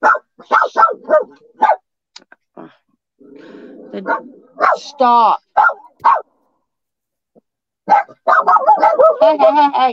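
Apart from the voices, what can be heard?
dog barking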